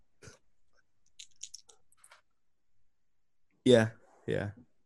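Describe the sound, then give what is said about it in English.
Two loud, forced coughs, one right after the other, preceded by faint spluttering mouth clicks and lip noises, from someone pretending to be a sick man. “You're coughing and sort of spluttering and stuff.”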